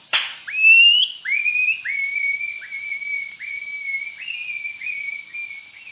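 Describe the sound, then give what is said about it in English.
Someone whistles an imitation of a nightingale's song: a bright, high, steady tone broken into about nine repeated phrases, each opening with a quick upward slide, fairly loud with no talking. “Now for the nightingale.”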